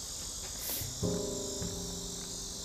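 A northern cicada, the common cicada, buzzes from a tree in a steady, unbroken high drone that fills the whole clip, joined briefly midway by a short tonal sound in the background.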